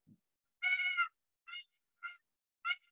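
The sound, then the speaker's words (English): A turkey box call is played to make a purr, the top of the box touched softly and lightly: one longer rolling, raspy note followed by three short, evenly spaced chirps, clear and fairly soft with no voices. “So my purr, let's see if I can get this to purr just like this.”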